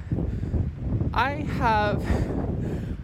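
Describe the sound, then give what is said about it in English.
Steady wind buffets a microphone outdoors during a walk on a windy day, making a continuous low rumbling roar throughout, with a brief burst of voice partway through. “So also, it's a little windy. I apologize if that sound comes through.”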